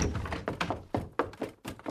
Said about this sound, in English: He was no longer reading, but paced despairingly until a young girl burst through the door.